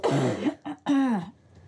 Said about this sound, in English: Do you mind if I just cough a bit? Go on.